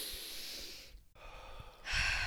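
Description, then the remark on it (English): A strong, forceful inhale through the nose, breathy, with a long noisy draw, a brief pause, then a louder, sharper sniffing pull at the end. “Like, I need her to do like a strong inhale, like a.”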